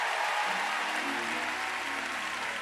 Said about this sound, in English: If you believe that, give him a clap offering. Let him know that you're talking to him.